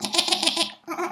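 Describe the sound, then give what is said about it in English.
A person imitates a sheep's bleat: a loud, quavering, nasal 'baa' with a rapid wobble, one long call followed by a shorter second one, with no other talking. “Although that sounds more like a goat,”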